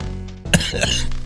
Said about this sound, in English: Fucking coughing.